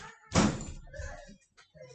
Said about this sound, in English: Well, you're the one that shut the door.